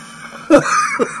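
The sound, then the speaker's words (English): A sudden harsh cough, followed by a strained, raspy wheeze and a second smaller cough, like someone caught in a brief coughing fit. “Excuse me, coughing to death.”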